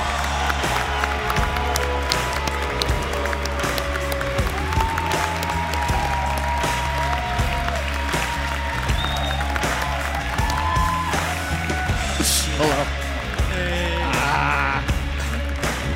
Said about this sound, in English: All right, ladies and gentlemen. Put your hands together for your next guest, the president of Sony Worldwide Studios, Shuhei Yoshida.